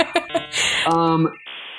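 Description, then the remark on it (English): A voice imitates a 56K dial-up modem connecting: a few short clicky vocal bursts, then a buzzy warbling tone, ending in a steady breathy hiss, all fairly loud over under two seconds. “Like, I had a 56K modem connection, which most people, I guess, nowadays have no clue what that is. But not fast. Insert that sound here of it connecting.”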